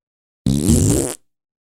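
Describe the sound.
A voice imitates a rocket blast with a single loud, breathy whoosh, a buzzing, hissy rush lasting under a second that cuts off abruptly.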